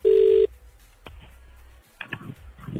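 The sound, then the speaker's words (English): A single loud burst of a steady phone ringing tone, about half a second long, followed by a sharp click and faint line noise as the call seems to connect. “I reckon it's probably like a couple of athletes in bed together thinking, we can't answer it now. One more then. They might be finished. Someone's picked up”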